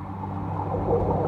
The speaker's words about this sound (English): In fact, I think it's the biggest creature in the whole wide world. Do you know what it is, little explorer? Yes, it's a whale. A blue whale.